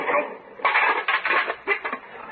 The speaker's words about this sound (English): Oh. Bumped something. Hope I didn't hurt your car. No, you just knocked down your mailbox.